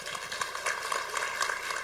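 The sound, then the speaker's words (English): An audience applauding: many dense, overlapping claps at a steady, fairly even loudness for about two seconds, with some cheering blended into the clapping. “there's your round of applause. I got some cheers.”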